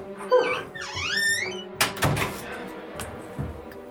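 A dog whimpers in a quick series of high, wavering squeals, followed by a few sharp clattering knocks like a door or cupboard.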